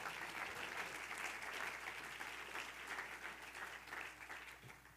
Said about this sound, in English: Oh, one more time, clap your hands to Jesus.